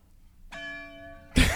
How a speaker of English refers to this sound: It's church bells.